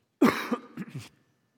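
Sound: cough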